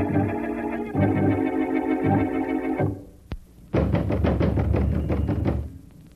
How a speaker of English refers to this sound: We've banged on the door for 10 minutes.